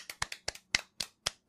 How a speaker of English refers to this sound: If you like this show, Gary, join my applause